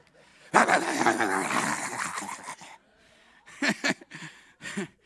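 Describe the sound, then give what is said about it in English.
A Pentecostal preacher imitates a slobber-mouth tree dog, with a long, rough growling stretch followed by a few short whimpering yelps, fairly loud, with brief pauses between. “We get a little bit like a slobber mouth tree dog.”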